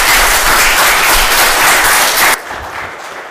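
A crowd applauds loudly, a dense wash of many hands clapping at once, which drops off sharply after a couple of seconds into a softer, thinning patter.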